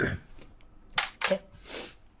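A person coughs: two sharp, raspy bursts in quick succession, followed by a softer, breathier exhale. There is no talking, just faint background noise.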